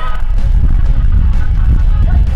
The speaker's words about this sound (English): Oh, that's so great. It's the sounds of, I guess, it's not a Mexican ice cream truck. It's actually a Mexican water truck.